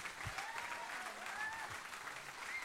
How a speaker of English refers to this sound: Come on, let's give him a big clap right here.